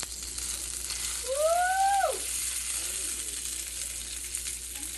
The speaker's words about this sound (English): And I'm sitting here cooking some sausages, you know, some sausages. Yeah. Can you hear the sizzle?